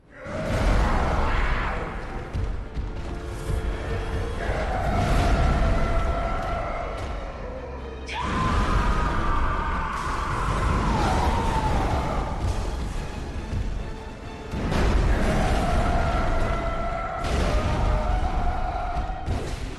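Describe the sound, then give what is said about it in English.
Loud, drawn-out monstrous screams from the Vicar Amelia boss fight in a horror video game, wailing and bending in pitch over a dense roaring rumble, arriving in three long surges with no speech. “Somebody had a good time making some of those screams, right, in the studio.”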